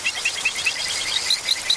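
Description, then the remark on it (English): Calls of poison dart frogs of South and Central America, recorded and mixed by Darren Meyer and Davey Stiles: a steady series of short, high-pitched chirps, about four per second, repeating evenly over a soft hiss of background chorus. No voices are heard. “Darren Meyer and Davey Stiles recorded and mixed this collection of their calls.”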